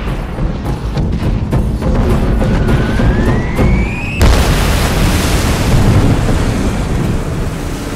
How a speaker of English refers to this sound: twisting his head in time to see the sea boil up around her and multiple eruptions plume across her deck.